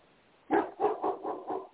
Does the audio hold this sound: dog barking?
yes